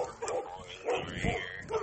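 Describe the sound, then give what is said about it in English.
A family's dogs barking in a handful of sharp, repeated bursts, fairly loud, with short gaps between each bark. “My parents have, oh my gosh, stupid dogs barking. This is loud.”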